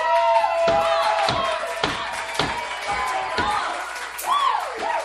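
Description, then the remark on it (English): An evening event crowd cheers loudly throughout after a man responds to a call to register to vote, with whoops and whistles rising over the din, while heavy beats like rhythmic clapping or stomping land roughly every half second. “I just wanted the applause.”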